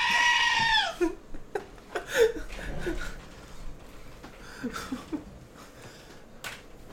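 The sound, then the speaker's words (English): A loud, shrill screaming goat sound effect blares for about a second at the start, then gives way to scattered quieter clicks and rustling noises. “You called me a goat, so I had to pull out my screaming goat.”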